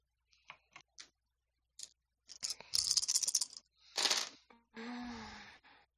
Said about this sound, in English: So what I'd like from you is just a dex stealth roll. And do include your hunger dice.